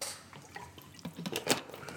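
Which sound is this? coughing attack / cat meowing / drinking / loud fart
drinking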